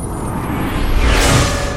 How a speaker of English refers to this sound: In one of Astoria's hands, you see this yellowish energy start to form, and in the other one, you see this light blue. She pushes forward her left hand, and this sunbeam arcs across the room, slamming into you.